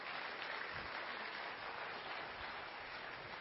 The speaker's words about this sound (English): But one thing I have figured out is that the more I turn the card around, the more people see spots. And occasionally they even clap their hands when they see that, for whatever reason.